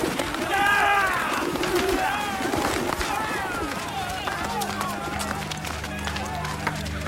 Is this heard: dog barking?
no